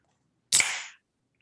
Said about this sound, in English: I got fucking Sarah opening a popsicle in front of me like a weirdo.